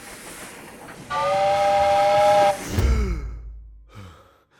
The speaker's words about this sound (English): Only her voice isn't there. Only a sound that pierces right through you, chilling you to the bone, scratching at your soul. A whistle.